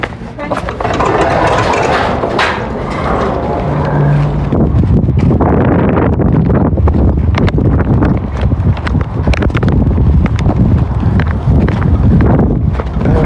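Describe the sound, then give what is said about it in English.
Loud, continuous wind buffeting a microphone outdoors, with a heavy low rumble and gusty roar throughout, and faint scuffing or passing traffic underneath. “You can hear it's windy now.”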